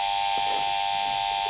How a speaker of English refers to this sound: I have a question. Yeah, you fucking put a buzzer for a question? Yeah, I did.